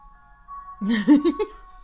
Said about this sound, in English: Hold for ice cream truck.